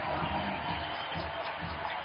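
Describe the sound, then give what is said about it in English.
A steady, dense roar from a large crowd cheering the team on at a basketball game, loud and sustained throughout with no clear individual voices standing out. “Ron Boone goes to his feet, cheering the team on. So does the crowd.”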